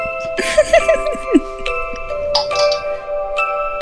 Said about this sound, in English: Tapping the things on the table when I'm talking.